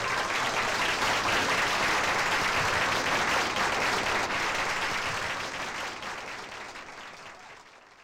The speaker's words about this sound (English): Clap yourself, everybody.